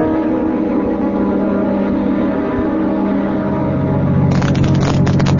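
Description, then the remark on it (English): A car drives along a road with a steady, loud engine drone and rumbling road noise, continuous throughout, growing a little rougher and grittier near the end. “My deputy and I'll drive out over the route between here and the plant and have a look for him.”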